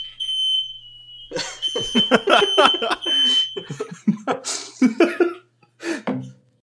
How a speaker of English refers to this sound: But as evidenced by the fire alarm, the smoke alarm going off